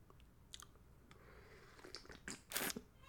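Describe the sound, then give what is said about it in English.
A quiet sip of coffee: soft mouth clicks and small wet noises, then a short breathy slurp near the end. No one speaks. “Quick sip of coffee.”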